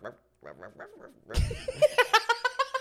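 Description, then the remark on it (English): A person imitates a dog barking: a few soft, quick yips, then a sudden loud outburst followed by a rapid, rhythmic string of bark-like vocal pulses that verge on laughter. “Y'all just... Yeah, bark.”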